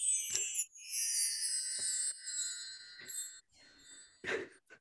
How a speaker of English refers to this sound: Yes, and so these babies, my chimes, they are very good for like cleansing your aura, and like you said, they will like bring you back into the moment.